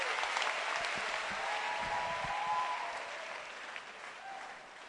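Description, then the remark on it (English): A church audience claps their hands for the Lord with steady, dense clapping that holds fairly loud for a few seconds, then eases slightly toward the end, with faint murmuring voices mixed underneath. “Clap your hands for the Lord and you may be seated.”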